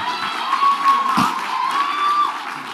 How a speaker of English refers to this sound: Y'all clapping.